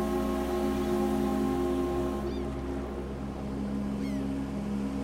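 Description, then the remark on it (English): A ferry whistle sounds in one long, steady, droning blast over the rumble of a boat engine as the ferry pulls away from a wharf, with a few faint chirps rising briefly in the background. “The boat pulls away, and I hear the ferry whistle.”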